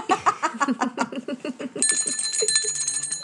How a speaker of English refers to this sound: And I've got my little bell here. That's my little one that I use on my altar. So that's very sweet.